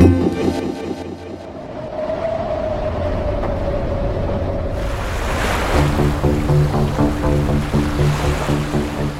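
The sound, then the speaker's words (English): Rolling ocean waves and broad water wash around the cargo ship Peak Pegasus, carrying soybeans across the Pacific Ocean to China, with a steady low engine-like hum and a brief rising tone early on; the surf swells louder midway, full, with no one talking. “Right now, there is a cargo ship racing the clock to cross the Pacific Ocean.”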